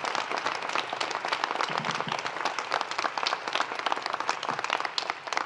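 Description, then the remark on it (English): Sustained audience applause for the communications network team, a dense crackle of many hands clapping at a steady level throughout, with no voices rising above it. “And let's just continue that round of applause for the whole communications network team for giving us the gift of this network, truly.”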